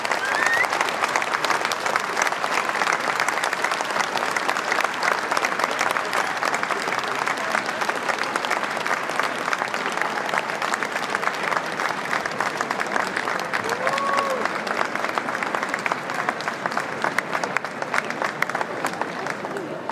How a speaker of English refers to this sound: And you can hear the there's some excitement in the crowd here.